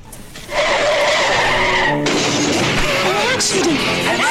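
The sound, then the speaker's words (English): A car skids with a loud, sustained tire screech in an accident with a child in the car, bursting in abruptly and holding for about four seconds, its shrill pitch wavering and sliding as the vehicle slides out of control. “An accident! The humans had an accident. There was a child in the car.”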